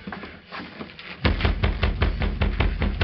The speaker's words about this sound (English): He rapped on the door.